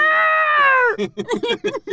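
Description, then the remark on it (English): Someone imitates a Godzilla roar with their voice during a scene-by-scene dramatic reenactment of Godzilla walking through things: a loud, strained, high screech held for about a second, its pitch sagging slightly at the end, followed by quick talking. “We'll even make the Godzilla sounds as he's, you know, walking through things.”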